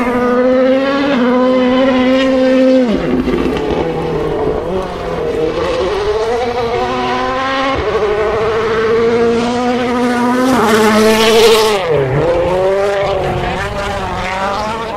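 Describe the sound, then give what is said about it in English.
A WRC rally car's engine roars past at high revs, its pitch climbing and dropping sharply through several gear changes and throttle lifts, with a brief hiss of gravel near the end. “They're following it on the WRC app. Here comes Alvin.”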